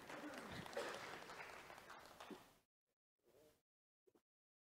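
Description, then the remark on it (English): People clapping together in a dense, steady burst, a hand clap of praise to the Lord one morning, fading out after a couple of seconds, followed by a few brief, quieter sounds of a voice. “Give the Lord a hand clap of praise for Water Girls this morning.”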